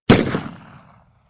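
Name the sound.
gunshot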